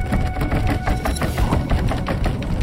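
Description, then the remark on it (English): A loud, chaotic barrage of knocking and pounding on a door, many heavy thuds overlapping in an irregular, continuous clatter with no voices. “At the word they, another cacophony of knocking and beating sounded against the door.”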